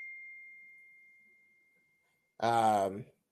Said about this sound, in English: Sorry about that. I guess my phone been tripping lately. I could cut it down, it'll ring. I can cut it down again, it'll beep.